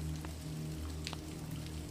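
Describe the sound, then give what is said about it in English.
Steady rain splatters onto the surface of a pond in the woods, a dense patter of droplets with occasional brighter plinks, constant, with a low hum underneath and no voices. “Rain splatters on the pond.”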